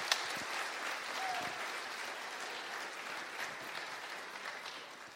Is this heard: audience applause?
yes